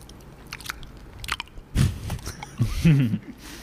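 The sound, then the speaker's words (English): A crunchy bite into an ice cream novelty, followed by a few moist chewing crunches in quick succession, with quiet background otherwise and no talking. “You hear that little crunch?”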